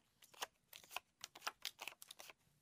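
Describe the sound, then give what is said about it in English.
A quick run of crisp papery snaps and flicks as playing cards are shuffled and dealt, coming in uneven bursts over a couple of seconds, quiet, with no talking. “I thought you shuffled the cards.”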